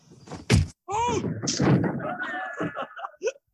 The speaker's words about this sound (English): Yeah, it's when Olaf punches his friend that makes him lose their tickets to the Titanic. Yep, that is the fight during the poker game.